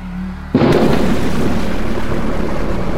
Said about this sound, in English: The macabre display culminated with an explosion, sucking the horses back into the center of the merry-go-round, which was now folding in on itself.